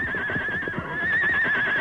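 A horse named Silver neighs loudly and rears as a man tries to ride off on it, a shrill, sustained whinny that wavers for nearly two seconds over a rough, scuffling rumble underneath.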